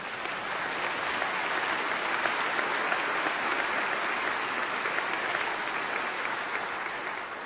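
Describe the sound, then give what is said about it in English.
An audience applauds steadily for several seconds, a dense, even wash of clapping hands that holds at a constant loudness throughout, with no voices standing out. “Now I'm embarrassed. I wasn't begging for applause.”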